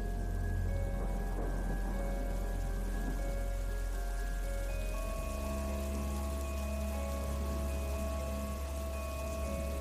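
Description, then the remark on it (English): Steady rain pours down on a dark, stormy evening at Flood Meadows in Hampshire, England, a dense hiss of drops with a deep low rumble of thunder running underneath. No one speaks. “It's a dark, stormy evening, and I'm walking through Flood Meadows in Hampshire, England, taking a shortcut on my way home.”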